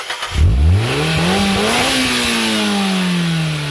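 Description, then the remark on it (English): A race car engine roars to life and revs up sharply, its pitch climbing fast and then holding a loud, steady high whine for a few seconds, alone. “Marketers, start your engines.”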